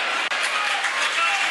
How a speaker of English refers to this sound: Powell going out of the game, Paris Cowan Hall coming into the game. Getting a good round of applause, Jack Powell. He's done well today for me.